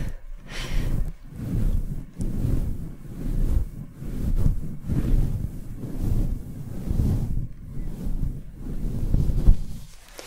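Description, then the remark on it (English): Rain falls outside in a continuous rushing hiss with a heavy low rumble, swelling and easing in gusty waves over the whole stretch, with no voices. “It started to rain outside, unfortunately.”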